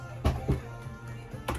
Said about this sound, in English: It's a pretty nice keyboard. I mean, it's nothing to write home about. Let's see how the typing feels. Not bad. Standard Logitech, very quiet, very comfortable, so I think we'll be okay.